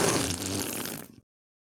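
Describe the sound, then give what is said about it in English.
A loud, wet slurp lasting just over a second as a spilled drink is slurped off a keyboard: a continuous noisy sucking sound with a low gurgling edge that stops abruptly into silence. “Was not prepared for the keyboard slurp.”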